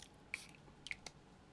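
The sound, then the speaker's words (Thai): A nasal spray gives three quick hissing spritzes: one alone, then two more in fast succession, with no talking. “เอาพ่นไอ้นี่ซ้ำเข้าไ”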